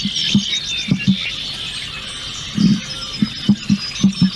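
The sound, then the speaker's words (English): A bird gives deep, prehistoric-sounding calls: a series of short, low booming pulses, some in quick pairs, over a steady high-pitched chorus of insects or chirping. “Yeah, that's the sound they make. That's very prehistoric. Jurassic Park-ish. Let's hear it again.”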